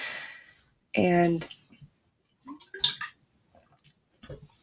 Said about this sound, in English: And I just spilled my water all over myself, but it's okay.